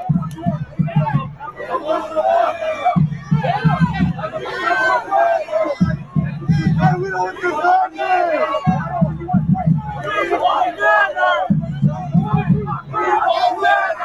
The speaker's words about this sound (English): So they're at the stadium. And the fan group that is showing up, much to the chagrin of the other fan groups, are, after the game, yelling at the players. Take a look at this.